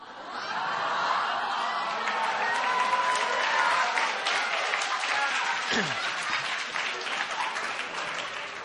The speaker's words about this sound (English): And when you see the sign go above his head, don't feel guilty. I am blessing you and authorizing you to do this. All of you guys are just going to start clapping.